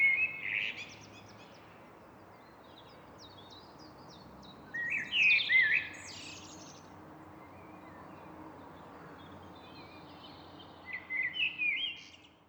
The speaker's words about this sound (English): I was out in the park recording the blackbirds for the melody, but... there was also a blackbird making some rather odd noises, a bit like a thrush. So I guess this isn't what you'd call blackbird song, more blackbird calls or articulations.